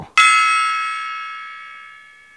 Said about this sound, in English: And I thought I hid that gong from you. I mean, put it away.